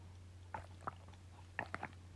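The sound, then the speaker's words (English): Quiet sips of water: a few brief wet slurps and swallowing clicks in an uneven rhythm over a low steady hum, with no talking. “And I just love talking about dreams as I sip on this water.”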